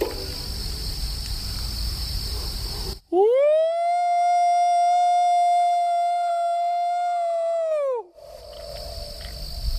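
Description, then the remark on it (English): A voice lets out one long, loud, steady howl imitating a Bigfoot call to see if it gets a response, swooping up at the start and dropping off after about five seconds, with faint insect buzz before and after. “Let me give a Bigfoot howl and let's see if we get a response.”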